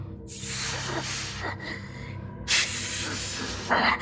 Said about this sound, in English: It was making a noise, a kind of weird hissing noise. It was breathing and hissing, and I could feel its cold breath on my neck.